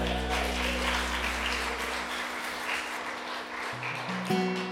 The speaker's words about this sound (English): I guess they're clapping for me